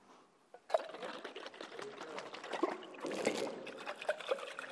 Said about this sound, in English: Why did the water come out of the jar? Lid wasn't on. Because the water was in the jar. Right? It was in there.